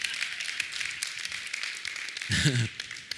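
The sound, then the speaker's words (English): An audience claps together in a dense, steady patter of many hands that carries on for a few seconds, with a short voice cutting in briefly near the end. “Yeah, you can clap Jesus that one on.”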